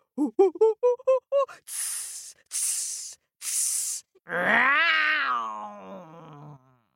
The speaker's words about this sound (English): He set off back towards his den, dragging his sack behind him. The animals yowled and howled and hissed and shrieked.